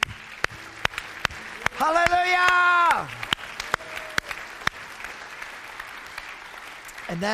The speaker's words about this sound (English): Let's clap.